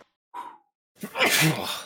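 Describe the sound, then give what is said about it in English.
A voice mimics a sneeze during a tabletop role-playing game: a short breathy intake, a brief pause, then a loud, drawn-out, noisy burst that trails off over almost a second. “You that sneeze, fucking sucks.”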